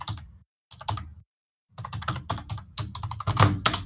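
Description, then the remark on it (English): Rapid typing on a computer keyboard, fairly loud, with dense clattering keystrokes in bursts broken by short pauses and no talking. “Bang them fucking keys, son.”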